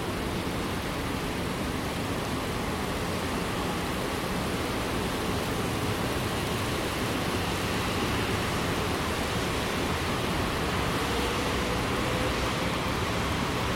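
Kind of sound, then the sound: nature, steady rain falling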